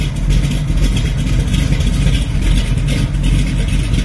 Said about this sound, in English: another successful 383 motor rebuild. Let's hear how she runs. Fires right up. Runs beautiful. Nice lumpy cam. We haven't even driven it yet. Nice and lumpy sound out the back.